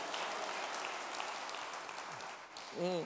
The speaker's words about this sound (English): Come on, clap your hands.